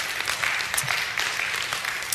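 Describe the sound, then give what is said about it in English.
Steady applause from a sizable crowd fills the space, a dense wash of many hands clapping at once with no voices breaking through. “We could applaud heaven forever, couldn't we?”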